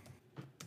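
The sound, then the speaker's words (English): A few quick computer keyboard keystrokes tap out in an irregular rhythm, each click crisp, with nobody speaking over them. “Hopefully you guys can hear the typing of the keyboard in the background.”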